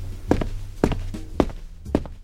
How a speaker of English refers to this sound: Ah, so you just recreate whatever sounds you see? Sometimes, like when it's something simple, like footsteps walking down the street.